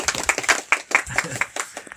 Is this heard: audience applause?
yes